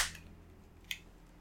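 A single crisp, sharp finger snap from a person snapping their fingers rings out once against a quiet low hum with no one talking.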